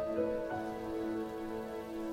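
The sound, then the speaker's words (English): Steady rain hisses continuously at a moderate level over a backyard, mixed with a sustained, droning musical tone, with no voices. “An hour later, I buried Casey in my backyard while it rained.”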